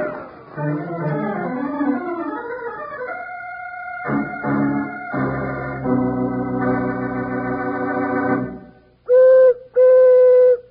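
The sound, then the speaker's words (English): A prairie chicken's booming call: hollow, hooting tones that rise and fall, then hold steady, ending in two loud, sustained resonant hoots with a short pause between them. “They call that the booming call of the prairie chicken. No other animal noise like it.”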